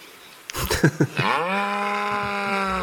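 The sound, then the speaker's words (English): A few brief knocks and rustles give way to a cow's long, loud moo, a steady drawn-out low call held until the end, with no voices; the cow is among cows in woods at a campsite. “Damn, that cow is... Come on, you're ruining our recording. Well, moo to you too.”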